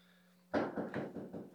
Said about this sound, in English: We're going to see who at the door doing the police knock.